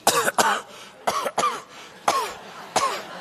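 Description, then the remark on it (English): A person coughs repeatedly, about six harsh coughs coming in short uneven bursts and pairs, with brief pauses between them and no talking. “I'm sorry, I just got a little cough because of this smoking gun I just found.”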